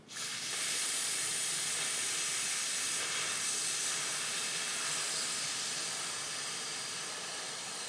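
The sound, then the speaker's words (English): A long, steady hissing exhale through the mouth, a broad airy sound that starts abruptly and holds at an even, fairly loud level for several seconds, fading slightly toward the end. No one speaks. “And then as you breathe out, I want you to breathe out through your mouth, but I want you to make a hiss noise.”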